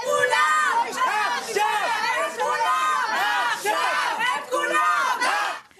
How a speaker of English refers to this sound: Relatives of the Israeli hostages burst into a parliament meeting yelling, "Get up from your chairs," demanding they do more to help their loved ones.